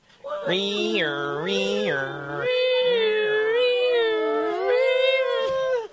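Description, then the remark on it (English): A group of voices, singing together on instruction, imitates an ambulance siren, a loud sung wail stepping between high and low pitches, then stretching into a long wavering tone for about five seconds. “Now give me the sound of an ambulance.”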